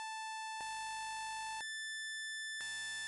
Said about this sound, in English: Then there's just plain sine waves or pulses.